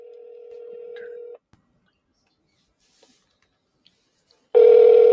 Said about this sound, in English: All right, let's hope he picks his phone up. We'll see.